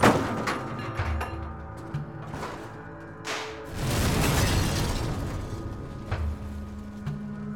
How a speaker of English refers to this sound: The steel jerked the truck one final time into the wall and swung it around in a clockwise motion. The truck exploded through the wall and flew into the air before dropping down and smashing onto the rocks below.